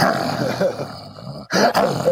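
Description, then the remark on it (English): A man growls and snarls in a rough, throaty voice, imitating a wolf, with a brief pause before a louder burst of growling. “I mean, listen, you're great with the animal sound effects, but I just love how they're all kind of the same.”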